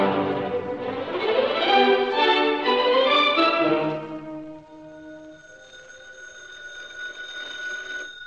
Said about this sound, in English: Britt Reed, well-known playboy and publisher of the Daily Sentinel, gradually awakened to the insistent ringing of the phone beside his bed. He yawned, turned on the light, and noticed it was after 3 a.m. Then he reached for the phone.